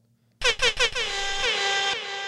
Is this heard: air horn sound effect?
yes